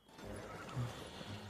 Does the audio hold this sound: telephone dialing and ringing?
no